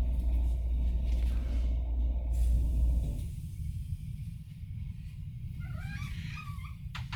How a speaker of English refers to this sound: We had the AC kick on. We turned that off. Probably hear it.